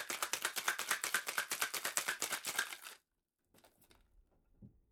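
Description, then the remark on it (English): A lidded cocktail shaker full of ice, lemon juice and simple syrup is shaken hard and fast for about three seconds, a loud, steady rattling rhythm, then stops abruptly, followed by a few faint clinks and handling noises. “Put all this into your shaker, put the lid on the shaker, and shake.”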